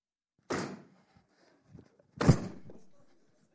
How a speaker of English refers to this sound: I just stomped all over that $20 bill, man.